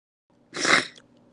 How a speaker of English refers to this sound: From now on, the sniffle is just how everybody's going to have to start their audio message, you know? Because we're about to be in a little sniffle cult.